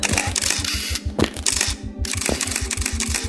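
Rapid camera shutters fire in a dense, overlapping burst of clicks as reporters photograph the Shah walking around his car toward the law faculty steps, many cameras snapping at once in a steady mechanical rattle with no talking.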